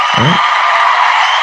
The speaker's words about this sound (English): Kudos. Matter of fact, I think, where's the round of applause?